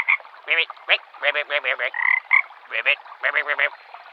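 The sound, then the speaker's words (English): A frog named Lady Penelope croaks repeatedly, fairly loud, in quick clusters of throaty ribbits broken by short pauses and a couple of higher, drawn-out calls, with no talking. “Lady Penelope says she's sorry if her ribbits are a little awkward today.”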